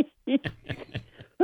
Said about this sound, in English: I have a chronic cough from allergies and asthma, and boy, does that make, people always kind of stood away from me as a result of that, but now I get quite a distance.